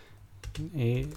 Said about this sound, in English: I'm actually looking this up. We're both typing now.